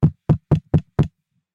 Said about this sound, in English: Say I'm the neighbour and you knock on the door.